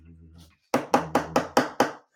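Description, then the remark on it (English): An improvised drum roll for announcing a first place winner: six quick, sharp knocks struck on a hard surface in an even, steady rhythm, fairly loud, following a brief low hum at the start. “Now, first place winner. Drum roll.”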